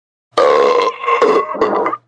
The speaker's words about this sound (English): The bar's keep kept passing out root beers, knowing all too well that Marcus had his quota. He could smell the foul burps escaping from within the poor guy.